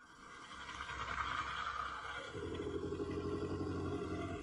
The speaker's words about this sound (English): I think a mountain lion would do that kind of roar or growl. Sadly, the video ends shortly thereafter, leaving the viewers unsure of what was actually responsible for such an unnerving sound.